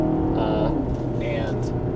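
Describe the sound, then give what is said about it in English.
A car engine drones loudly and continuously from inside the vehicle, its steady rumble and whine building as the car, loaded with test equipment, gets back up to speed, with road noise filling the background. “I'm getting back up to speed here.”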